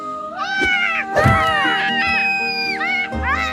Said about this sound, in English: But then we get almost more Greek mythology as from the skies flies down the seagull goddess. A seagull.